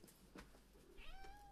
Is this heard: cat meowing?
yes